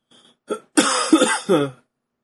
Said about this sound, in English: What was that? I just coughed.